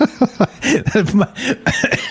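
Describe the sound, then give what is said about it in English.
A loud fit of coughing: a few short sharp coughs, then a run of harsher, throaty hacks that continue for about two seconds with no talking. “Sorry. Yeah. Cough button.”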